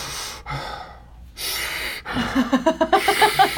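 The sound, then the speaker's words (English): Loud, heavy breathing of a man right up against the microphone: several long, rough inhales and exhales, then a quick run of rhythmic, huffing breaths near the end. “Like, he gets close enough, but then you can hear everything him going breathing.”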